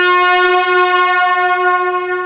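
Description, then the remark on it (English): A single long, loud car horn blast holds one steady, brassy mid-pitched tone for over two seconds. No one speaks. “let me pull up in my car”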